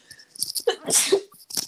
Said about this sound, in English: Excuse me. Sorry, I was trying to pull the mic away from my mouth before I sneezed.